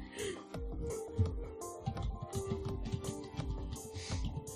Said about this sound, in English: What's she typing?